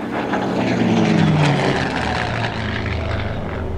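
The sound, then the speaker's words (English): A seaplane's propeller engine roars steadily as the seaplane takes off in the middle of the night, a loud continuous drone with a low humming tone that bends downward partway through. No voices are present. “Take off at the witching hour in your seaplane.”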